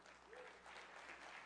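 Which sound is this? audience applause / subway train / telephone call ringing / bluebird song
audience applause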